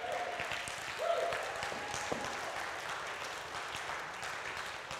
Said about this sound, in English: And so there is this movement of women that we all need to be appreciative for, and you people should be clapping your hands right now.